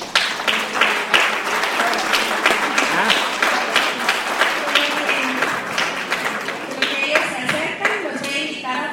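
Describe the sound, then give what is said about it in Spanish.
An audience at a church service applauds steadily to welcome the church dance group of the Mahanaí church, dense overlapping claps forming a loud, continuous patter with scattered voices and cheers mixed in throughout. “Por favor, lo recibimos con un aplauso.”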